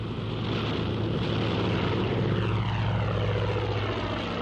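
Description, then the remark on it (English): A Mosquito propeller aircraft engine starting up roars steadily, a loud, dense drone with a low throbbing hum and rough mid-range buzz that holds for several seconds, with no voices over it. “I shouldn't think so, but that's the Mozzie starting up.”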